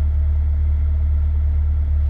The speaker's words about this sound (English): I'm just fascinated with the sound the car makes constantly.